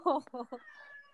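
A male cat named Misty meows in a quick run of three short, fairly loud cries, the first the strongest, then it trails off into quiet background.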